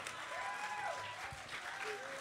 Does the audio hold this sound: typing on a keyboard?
no